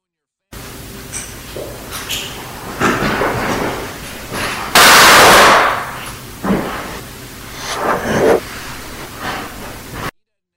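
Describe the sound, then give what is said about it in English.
A single loud, sharp gunshot-like bang bursts out midway through a hissy, noisy recording made by a recorder in an East Hallway, with faint whispery voices murmuring before and after it, a man's whisper seeming to say "Shot him." “you will hear what sounds like a gunshot followed by the whispery voice of a man saying, "Shot him."”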